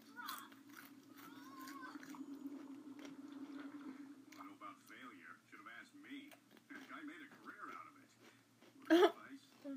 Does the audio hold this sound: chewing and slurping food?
yes